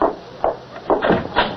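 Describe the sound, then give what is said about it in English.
A wooden door being opened at night to let in guests, heard as a series of short creaking, knocking bursts of wood over about a second and a half, with no voices. “Caesar, open the door!”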